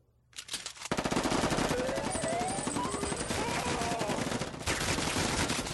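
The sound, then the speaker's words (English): Sustained rapid gunfire, dense overlapping bursts of shots rattling continuously for several seconds, loud and chaotic like a machine-gun shootout, with faint whistling tones sweeping through the barrage. “We've done the shootout already once.”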